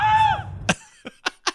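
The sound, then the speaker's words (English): A man lets out a strained, high shriek that slides downward in pitch, then it cuts off into four sharp, noisy bursts spaced unevenly over the next second. “Yeah, and then he just yells that.”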